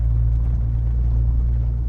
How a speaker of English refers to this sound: turns the truck and we cross over a culvert and into another huge low-lying hay field.